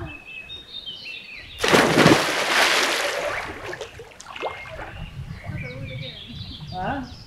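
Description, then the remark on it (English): A sudden loud splash as someone plunges into cold water for a swim, followed by a few seconds of churning and sloshing that fades out, with birds chirping throughout in an open outdoor setting. “But I convinced myself that this weekend I'm going to do some swimming and did just that, cold water, got the blood flowing”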